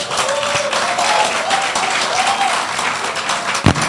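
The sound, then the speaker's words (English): A large audience at a church service claps in sustained, dense applause, with faint cheering voices rising above the steady patter and a sharp louder clap near the end. “And before you clap, let me say this before you clap.”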